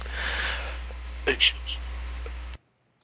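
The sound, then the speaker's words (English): A pair of quick, muffled coughs in close succession, rising only slightly above a steady hiss of background noise, which then cuts off abruptly into silence. “Sorry, I was just coughing.”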